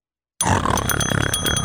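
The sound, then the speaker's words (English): A voice imitates loud snoring, likened to a kettlebell going through an industrial shredder, with a harsh, rasping, grinding growl lasting just over a second after a brief silence, while a bell rings with bright metallic tones above it. “I would describe the sound as a kettlebell going through an industrial shredder. So if I could impersonate that.”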